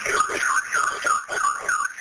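A home alarm sounds steadily during an emergency call, a shrill electronic tone that warbles up and down in a quick repeating cycle, roughly twice per second, without pause for the whole moment.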